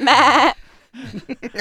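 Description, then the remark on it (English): A person imitates a goat with one loud, wavering bleat about half a second long, its pitch quivering rapidly, followed by a short burst of speech. “And what does it sound like in GOAT?”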